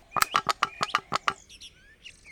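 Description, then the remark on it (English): A quick run of about eight sharp, rhythmic squeaks, like a creaky gate hinge being worked, followed by a few thinner, higher chirping squeals as it trails off; the gate at the home of Baba Yaga. “The gate does squeak.”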